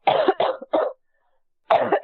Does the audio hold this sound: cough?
yes